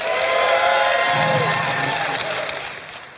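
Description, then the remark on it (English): A live crowd cheers loudly, a dense wash of shouts, whoops and voices that holds steady for a few seconds before fading out toward the end. “If you think Yanni was telling the truth, go ahead and give a cheer now.”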